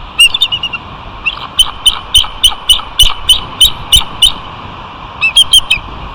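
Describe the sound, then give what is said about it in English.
Ravens mobbing an eagle's nest: a steady run of about a dozen sharp, shrill, piercing calls, then a brief pause and another quick burst over a low rumbling background. “This is where ravens are attacking this nest, this eagle's nest.”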